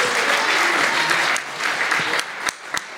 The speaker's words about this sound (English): I want to thank my sister for coming out for this. Just a big round of applause.